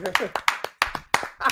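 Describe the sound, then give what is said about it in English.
Hands clap in a quick, slightly uneven run of sharp, bright smacks, about eight in under two seconds, with voices talking over the clapping. “Hold up, let's clap it up for this one, guys.”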